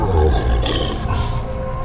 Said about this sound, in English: It was a strange roar, a rumble like a rock slide mixed with an animal scream, like a panther. It came from the woods where I had driven the dog, and now I heard the mutt whimpering.